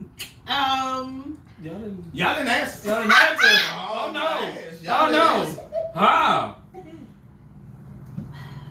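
A dog lets out a run of loud, pitch-bending yips and barks in irregular bursts over several seconds, with short pauses between and no one talking.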